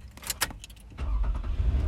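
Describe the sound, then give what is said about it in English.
Keys jingle briefly, then a car engine cranks and turns over as the driver starts the car, settling into a steady low rumble that continues to the end. “Wait, I have to turn my car on.”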